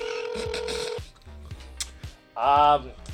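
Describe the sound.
A steady electronic phone tone holds for about a second, followed by short dialing beeps over low thumps as a flip phone is flipped open and a call is placed, then a brief burst of a voice near the end.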